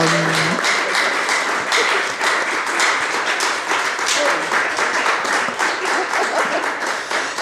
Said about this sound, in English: It feels full circle for me personally to be speaking to these incredibly brilliant writers about their stories. Could we give them a round of applause again?